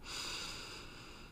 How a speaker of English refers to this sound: And before we get too far into this, let's just take a quick moment to take a nice deep breath and get grounded. So I'll lead us through a little breathing. All right. Inhale in.